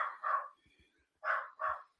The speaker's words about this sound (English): Naughty, noisy puppies.